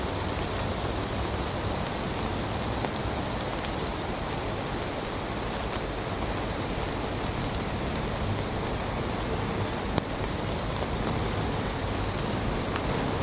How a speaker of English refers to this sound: I love the sound of rain.